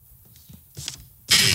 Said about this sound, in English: Okay, here we go. And now grab the paper right here and pull it up.